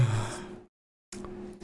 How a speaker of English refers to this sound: was that an actual yawn, or was that was there a little bit of fake yawning in there? It was an actual yawn, and then a sigh of this is gonna be another game that could just be ass. A very well timed yawn.